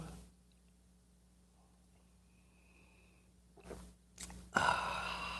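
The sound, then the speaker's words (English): Sips of coffee from a mug after a long quiet stretch: two short, airy slurps, then a longer, louder breathy slurp that carries to the end. No one speaks. “It's called the simultaneous sip. It happens now. Go.”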